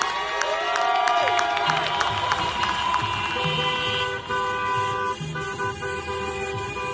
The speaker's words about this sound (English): So instead of marching hand in hand, we join a procession of cars.